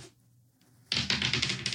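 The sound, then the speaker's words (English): Dice clatter and rattle across a hard tabletop in a quick burst of sharp clicks, starting abruptly after a quiet moment and tumbling for about a second, fairly loud. “Dice roll. Dice roll.”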